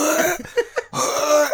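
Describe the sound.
A voice imitates forceful core breathing: a long, harsh, strained exhale, two short sharp puffs, then another drawn-out gritty blast of breath, loud.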